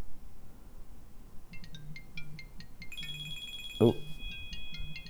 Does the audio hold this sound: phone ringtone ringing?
yes